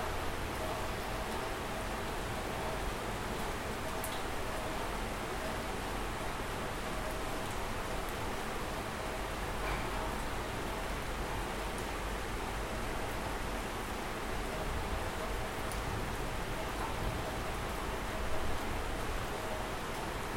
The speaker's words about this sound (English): In moments like this, the mind often gets very quiet and empty. So we can take advantage of rainy moments to listen to the nature and listen to ourselves.